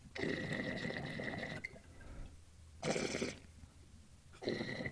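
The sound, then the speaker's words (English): A 14 mil standard reed game call blown in three raspy, buzzy blasts: one long note, then two short ones after pauses. The tone is harsh and reedy with bright overtones, and no one speaks. “All right, now the 14 mil standard.”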